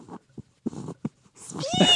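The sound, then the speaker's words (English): A cat named Harley lets out a few short, soft chirps and breathy sounds, then a louder, drawn-out meow with a rising and falling pitch at the end. “She's going to say something.”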